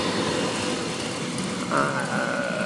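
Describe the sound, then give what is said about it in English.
A train rushing past, a dense steady roar filling the whole clip, with a sustained high metallic squeal or tone cutting in near the end. “train just passed.”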